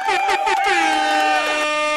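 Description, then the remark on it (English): A loud, blaring air horn sounds in several quick bursts that run together into one long sustained blast, bright and harmonically rich, with no talking over it. “Air horn it a little bit.”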